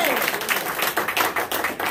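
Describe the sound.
A crowd claps hands together in praise in a steady, rapid patter, loud, with voices mixed in underneath the applause.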